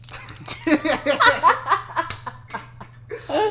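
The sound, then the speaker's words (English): Several sharp little clicks from retractable pens snap in an uneven run, partly buried under laughing and giggling from a few people. “Out of ideas on how to start a podcast. I know, episode 4, we're like, click pens.”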